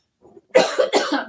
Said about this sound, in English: Excuse me, and I do have to clear my throat here real quick.